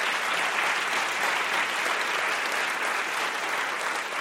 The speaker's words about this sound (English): So I just want to invite a round of applause to all of them for the way that they did this.